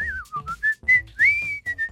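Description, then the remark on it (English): A person whistles with their lips, a short run of clear, bright notes that dip and rise, fairly loud, with brief breathy gaps between phrases and no talking. “give me another whistling tutorial there for just a second”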